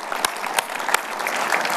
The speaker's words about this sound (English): So let's just give a round of applause. Thank all the moms, amen?